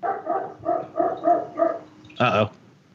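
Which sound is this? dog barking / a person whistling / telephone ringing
dog barking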